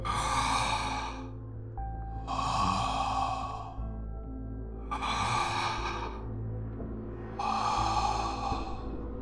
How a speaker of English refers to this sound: A slow, shuffling gait, plodding through the dark, up the stairs, down the hall, and right up to the door in front of me. The handler waited there a few long seconds, breathing hoarsely, almost menacingly.